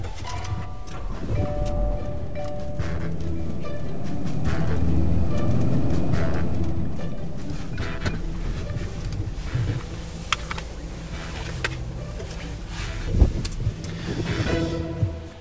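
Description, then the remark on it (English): A car being driven over to someone's house, heard as a steady low engine and road rumble that swells slightly midway, with a few faint clicks and one small bump near the end. No one speaks. “Let me, let's drive over to his house.”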